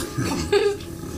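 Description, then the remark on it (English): A short, low, throaty belch, voiced by a person imitating the sound, rumbling for about a second with a brief louder swell in the middle, fairly quiet. “As the Borg approaches that Rathanax is on, you can hear as it lets out this low, like, belch.”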